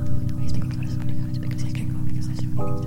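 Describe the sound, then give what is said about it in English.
Eerie, indistinct whispering from the other side of an apartment runs continuously over a low, steady droning hum, with a brief higher tonal swell near the end. “and that whispering from the other side of the apartment.”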